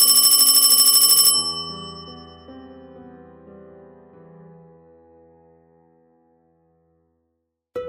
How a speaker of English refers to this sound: I've started to accept that our house has a communication line to the afterworld, but even so, I'm still filled with dread every time I hear the phone ring.